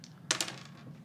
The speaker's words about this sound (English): Okay. And what's your difficulty dice roll?